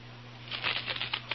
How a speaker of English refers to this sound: Know what I've got here? Sounds like money, and it is. Matter of fact, I've got a handful of genuine foreign coins. Real money you could spend right now in faraway lands.